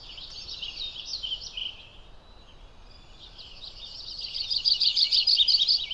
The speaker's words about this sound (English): Our Audubon's warbler is up here with us too.